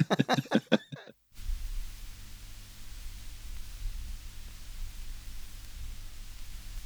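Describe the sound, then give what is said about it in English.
A short burst of voice-like sound cuts off, then steady, even tape hiss from a silent album track in its 2002 remix fills the rest, with a faint low hum beneath it and no other sounds on top. “3 seconds of silence or 6 seconds of hiss if you've got the 2002 remix.”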